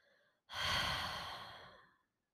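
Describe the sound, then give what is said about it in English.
A soft, brief inhale, breathing in and filling the belly, is followed by a long, loud, breathy exhale, like a deep sigh, about a second and a half long and fading at the end, during a guided breathing exercise. “Deep inhale, filling your belly, breathing in, and exhale.”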